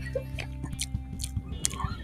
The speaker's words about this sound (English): Once you get snacky and you started a podcast, it's like, oh, is that a stale orange peel? I'm gonna put that in my mouth. Now let's get some ASMR of me chewing some stale orange peels.